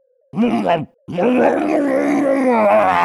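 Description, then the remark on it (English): A voice imitates a zombified dwarf chained to a table, screaming as someone crawls onto it: a short, throaty groan breaks off, then swells into a long, loud, strained scream-groan with a wavering pitch that holds for about two seconds. “And it lets out this huge blood-curdling scream as you crawl onto it.”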